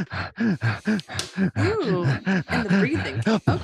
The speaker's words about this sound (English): Ooh, and the breathing.